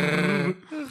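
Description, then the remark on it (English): A voice imitates the Wookiee Chewbacca's growl: a loud, rough, warbling bellow for about half a second, a brief break, then a shorter moaning groan that trails off. “All right, Chewbacca. What was that?”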